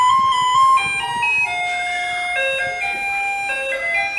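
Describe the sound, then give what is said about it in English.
A Taiwanese garbage truck plays its melodic jingle through a loudspeaker on a street in Taiwan, a bright electronic tune of stepping sustained notes, fairly loud and steady with faint street noise underneath. “In Taiwan, that is the trash truck or the garbage lorry.”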